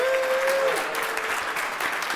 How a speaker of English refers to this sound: First of all, let's get everyone give a round of applause to